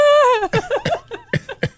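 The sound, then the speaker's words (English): A person imitates a dog's forced fake cough: a brief falling vocal whine, then a string of short, rough huffing coughs in an uneven rhythm, fairly loud, with no talking. “Forcing a cough out as you pet them.”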